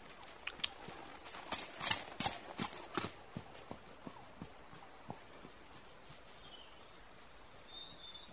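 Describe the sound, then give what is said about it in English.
Horse hooves clip-clop in a steady walking rhythm as a horse sets off along the river trail toward Riverdale: sharp hollow knocks that are loudest early on and then continue more softly, with a faint high-pitched chirping running in the background. “On, then. Giddy up.”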